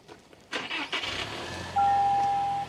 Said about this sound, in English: Let me fire this truck up.